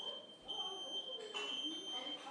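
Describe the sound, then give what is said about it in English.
A smoke detector alarm sounds a piercing high-pitched tone, holding almost continuously with brief breaks, while muffled voices talk underneath. “Okay, now the alarm goes off.”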